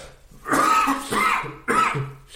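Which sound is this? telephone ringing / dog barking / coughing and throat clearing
coughing and throat clearing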